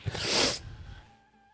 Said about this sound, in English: Is that a sniffle? You hiding something back there, buddy? That was a sniffle. Oh, that was a sniffle.